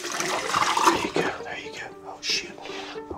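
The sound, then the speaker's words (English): A man pours potassium cyanide into a bucket: liquid pours and splashes in a rushing gush for about a second, then quieter intermittent trickles and sloshes follow, with faint murmuring voices and a low background hum. “It's not only the fact that he is right now pouring potassium cyanide into a bucket in front of me that makes me wonder this.”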